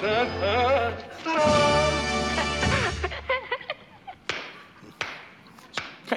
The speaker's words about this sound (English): There is even kind of a slow clap in a movie I've actually never seen, Mary Poppins.